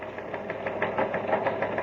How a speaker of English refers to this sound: Here's a five-star bulletin from Buzz Corey. It's coming over the teletype here in the newsroom of Terra's biggest newspaper, the Outer Space Dispatch.